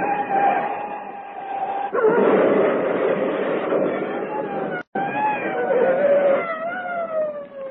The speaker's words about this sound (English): The suspect car zigzagged crazily from its blown-out tire, and the driver jammed on the brakes to avoid hitting the prowl car ahead. He went into a screeching skid and ended up wound around the light pole.